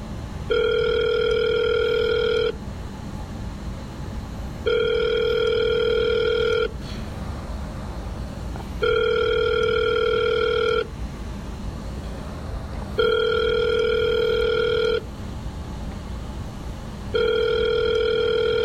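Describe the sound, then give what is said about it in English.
A phone ringing on an outgoing call placed on the Odie Boy Random Show: five steady electronic ringback tones, each about two seconds long with equal pauses between, over a low background hum and no talking. “let me pull up Munson's phone number real fast, and then we'll give him a ring”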